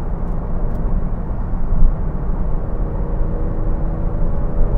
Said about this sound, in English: So, should I turn off the traction control or leave it on? What do you think? I got tires that are a little soft and near the end of their life right now. So we'll do a little, gotta get these tires warmed up.